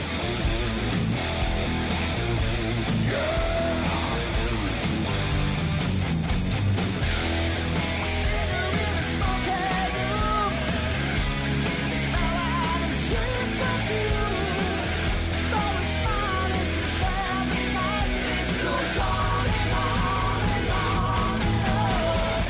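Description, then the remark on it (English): Loud, dense rock music blending 1980s heavy metal and 1980s pop, with driving drums, distorted guitars and strained, shouted vocals playing continuously at steady volume throughout. “It's a very cool band that takes 80s heavy metal music and mixes it with 80s pop music, which you don't think it really sounds good, you know, on paper, but if you hear them, it's amazing.”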